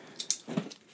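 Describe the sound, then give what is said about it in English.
A few short, bright metallic jingles of a dog's collar rattling on the dog, followed by a soft low thump and a faint fading rattle, fairly quiet. “Oh, that sounds like a dog's collar rattling. Yeah, with a dog attached to it.”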